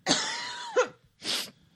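A loud bout of coughing: a long, raspy hacking cough ending in a throaty catch, then a brief pause and a second harsh cough, with no talking.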